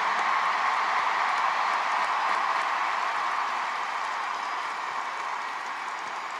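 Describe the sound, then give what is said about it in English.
A large concert audience applauds steadily for everyone who helped put on the show, including security. It is a dense wash of many hands clapping at once that holds for several seconds and eases off slightly toward the end, with no talking over it. “Let's hear a round of applause for everyone who helped us do this.”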